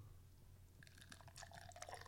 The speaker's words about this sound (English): Wait, I'll pour the can like right now. Oh, yeah, do it. That's that's going to sound amazing. Okay, wait. Now I want to In my headphones, it sounded like someone peeing a little bit.